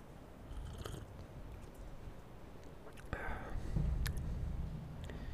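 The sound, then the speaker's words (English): A quiet slurping sip of hot tea lasting about half a second, followed by a faint click and soft mouth sounds against low background noise. “Let's take a sip of the tea.”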